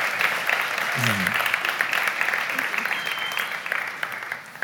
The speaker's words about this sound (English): So will you just welcome her with me with a big round of applause?